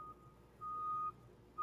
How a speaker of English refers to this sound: I also kind of, hold on, this truck is moving outside my door.